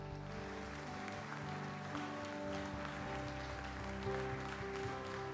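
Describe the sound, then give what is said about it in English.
An audience claps steadily for several seconds as a hand clap of praise to Jesus, a dense, continuous wash of many hands over sustained organ-like musical tones, with no talking. “Come on, can you give Jesus a hand clap of praise in the house today?”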